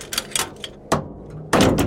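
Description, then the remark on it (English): A few light mechanical clicks and scrapes as a large seal at the top of a bell is untwisted, then a sharp knock and a loud, rushing heavy thud as the bell's door is unsealed and swung open, with no voices. “I had to untwist a large seal at the top to get the door open.”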